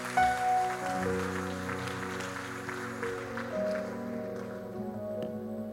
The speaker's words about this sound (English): Give him with a round of applause. Oh, do it better unto the Lord.